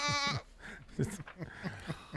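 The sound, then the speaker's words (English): A short, nasal, goat-like bleat from a human voice, loud, lasting a fraction of a second before people start talking over a quiet background; the sound is Janice from the TV show Friends. “Is that a goat?”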